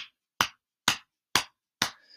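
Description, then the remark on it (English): A left hand slaps against the chest just below the collarbone four times in a steady, even rhythm, each hit a sharp, dull smack that quickly fades, with no talking. “And another thing that I've added has been to put my left hand over my chest and then like right under my clavicle and kind of slap.”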